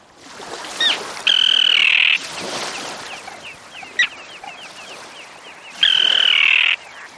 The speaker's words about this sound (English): For example, consider the terns. The common terns you're hearing have long pointed bills they use to catch small fish.